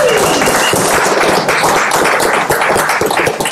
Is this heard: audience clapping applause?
yes